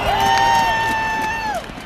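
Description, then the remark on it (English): A stadium crowd at a Northwestern University football game cheers in a loud, steady roar as a flag sails onto the field via parachutist, with one long, high, whistle-like note held over the noise for about a second and a half before it drops off. “Then another flag sailed onto the field via parachutist, and the crowd cheered.”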